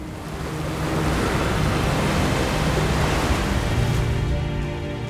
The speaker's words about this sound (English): Behind him, water rushed forth, flooding the path that led to the hidden isle.